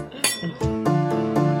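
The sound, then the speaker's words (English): Several glasses clink together in quick succession, bright ringing tones that sustain and overlap, with a few softer taps trailing off as the toast settles. “I think we need to make a toast to exploring new things.”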